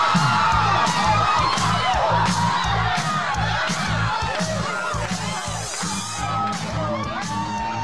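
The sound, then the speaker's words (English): A party crowd cheers and whoops continuously, many overlapping voices shouting and hollering at a steady, loud level with rising yells scattered throughout. “Hey, what's this I see? I thought this was a party!”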